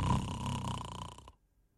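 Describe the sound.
A single buzzy, rattling snore imitated by a person's voice, loud, lasting just over a second before cutting off into near silence.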